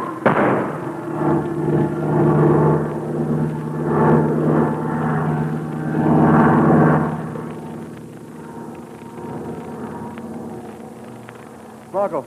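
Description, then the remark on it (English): A propeller airplane engine roars loudly in a dive, a steady, surging drone for several seconds, then eases to a lower, quieter hum before a brief sharp burst at the very end. “I dragged him out of that flaming cell with me and hid him here in my plane. Even if we crash, his body will be found.”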